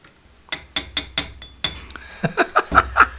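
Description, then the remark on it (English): A shot glass clinks several times in quick succession, sharp taps at first, then a run of lighter ringing knocks against a hard surface, with no one talking. “Shot glass is empty, bro.”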